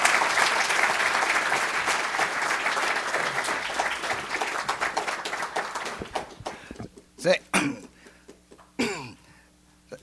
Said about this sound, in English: Would you please, with your applause, welcome Taro Aso. We're delighted to have him here with us today.